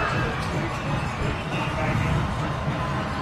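A large stadium crowd at a football game roars and cheers at the second-half kickoff in a steady, dense wash of noise with no break, loud and sustained throughout, a few shouts rising out of the din.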